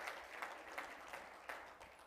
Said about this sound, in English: One more time, clap your hands to the Lord before you're seated. Hallelujah.